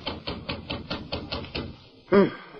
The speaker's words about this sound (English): She was interrupted by a knock at the door.